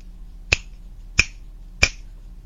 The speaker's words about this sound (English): Oh, I bet it's snap. Correct, the answer was snap.